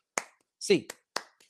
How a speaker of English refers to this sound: Hands up, Bruins fans. Eight clap time, baby. And 1, 2, 3, 4, 5, 6, 7, 8.